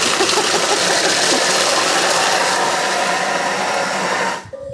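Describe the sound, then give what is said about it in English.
A kitchen blender mixes crust ingredients on a fast 5-second setting heating to 160 degrees, whirring loudly and steadily, a dense motor roar holding for several seconds before abruptly shutting off into near silence. “when you blend something in a blender, it all kind of goes up the sides”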